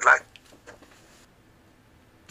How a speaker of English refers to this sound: you're cutting in and out.